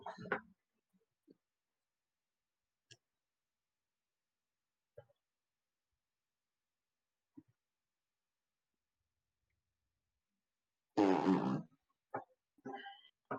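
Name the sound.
fart noise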